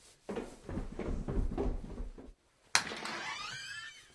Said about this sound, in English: He closes the door behind him.